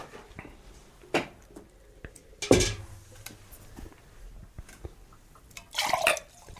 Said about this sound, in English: Let's get the dump bucket out here so we can wash these out.